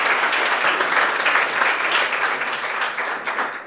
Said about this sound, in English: And give him a round of applause.